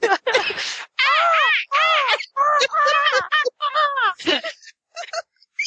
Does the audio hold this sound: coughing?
no